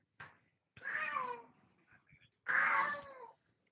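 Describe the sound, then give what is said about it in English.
A female cat caterwauls loudly, two long drawn-out yowls with a short click at the start and soft rustling in the pause between them. “That cat is going to be the death of me.”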